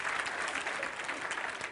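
An audience claps hands in a steady, dense wash of applause that stays at an even, moderate loudness throughout, with no distinct individual claps standing out.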